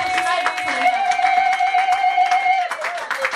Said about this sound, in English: Clap your hands and shout unto God, somebody.